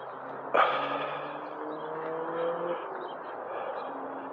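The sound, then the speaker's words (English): Birds squabble with harsh, overlapping squawks, a sudden loud burst early on, then continued raspy calling over a steady background hiss. No one speaks. “These birds are going at it. Fighting.”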